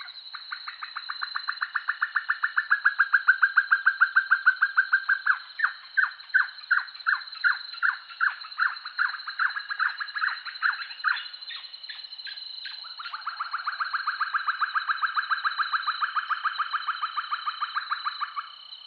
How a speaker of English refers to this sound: First up, we have a pair of Pacific pygmy owls in Peru. That's a lot of P's. We have a pair of Pacific pygmy owls in Peru.